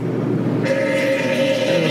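A long, drawn-out fart of gas after a colonoscopy, with a steady buzzing drone that kicks in partway through and holds its pitch to the end, sitting over a constant low rumble with no talking.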